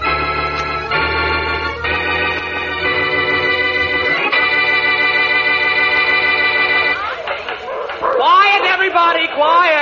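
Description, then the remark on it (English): A steady, droning musical passage gives way in the last few seconds to several dogs barking and yipping together, loud, in quick overlapping bursts. “I'm in favor of any episode with dogs in it.”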